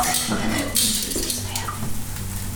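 A frying pan is rinsed out under running water after frying tempeh, with a steady wash of water and light metallic clinks and scrapes of cookware.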